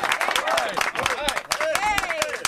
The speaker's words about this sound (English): The great Andy Furman joining us here on Fox Sports Radio. A round of applause for Andy Furman.